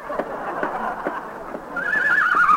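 A horse in an elevator whinnies loudly, a shaky, wavering neigh that rises and trembles over a couple of seconds, with faint clattering in the background.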